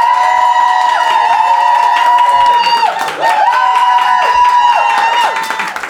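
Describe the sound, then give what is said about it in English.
A large live audience of dog fans cheers, screams and claps loudly and continuously for several seconds in a loudness contest, reaching 107.6 decibels, with high sustained voices riding over a dense wash of applause. “And if you're dogs, clap them to you now!”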